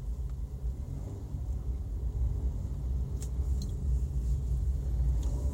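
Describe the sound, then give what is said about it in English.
Steady low car rumble fills the scene, a continuous engine drone from inside a vehicle creeping along in slow interstate traffic where road work is underway, with faint brief clicks and squeaks over it and no voices. “Traffic here is, I mean, they're working on the road here. I took the interstate.”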